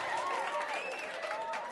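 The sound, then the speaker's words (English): An audience applauds steadily, a dense wash of clapping with whoops and cheers rising and falling over it, ending with one sharp louder clap. “Come on, give it up. Woo! The whole crowd, that's like better than the Riders game, right?”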